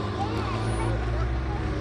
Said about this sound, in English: That car didn't sound well.